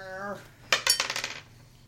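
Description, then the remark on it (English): A short voiced tone fades, then players roll d10 dice onto a hard tabletop to see who goes first in a Scion tabletop role-playing game: a sharp first strike followed by a rapid series of bright, diminishing clicks and rattles as they tumble and settle. “All right, so everybody pick up your dice and roll your d10.”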